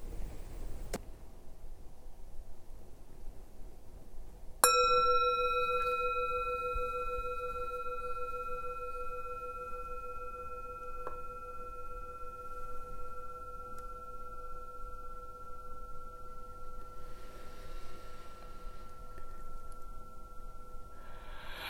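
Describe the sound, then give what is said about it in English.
A meditation bell is struck once at the end of a New Year settling meditation practice and rings with a clear, steady mid-pitched tone and bright overtones, slowly fading over many seconds, with a soft tap partway through and no talking. “And as the sound of the bell fades, whether you're sitting down, whether you're lying down, let's just take a few moments to notice how we are.”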